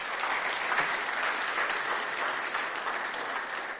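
An audience applauds for the Lord, a dense wash of many hands clapping at an even, sustained loudness for a few seconds, with no voices standing out.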